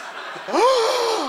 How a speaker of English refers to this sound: Gasps. Michael Madsen gasps.